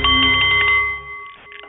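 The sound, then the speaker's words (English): A Nepalese meditation bowl rings with a steady, shimmering metallic tone, its bright overtones sustaining and slowly fading over nearly two seconds, with no voices present. “The Nepalese Meditation Bowl is chiming, and that means it's time for The Art of the CEO, the show for people who enjoy the challenge of business and who want to do it a little better.”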